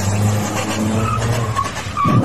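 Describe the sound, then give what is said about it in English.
A car frees itself from a tree it was stuck on and speeds away: the engine revs loudly as tires skid and squeal, the vehicle tearing away in a burst of noise, with a harsh scrape near the end. “He then the car frees itself from the tree and he speeds away.”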